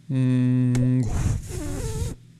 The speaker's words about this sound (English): And the trick is to, you have to maintain enough air in your mouth to, right now I'm going to put a whole bunch of air in my mouth, right? And I can blow.